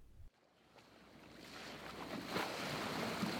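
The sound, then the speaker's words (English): A two-story boat moves across open water from Liberty Island toward Manhattan, with a steady rushing wash of spray and wind that swells gradually and stays continuous, with no voices. “General Castro, Cuddy, and Dr. Bath navigated a two-story boat from Liberty Island toward Manhattan.”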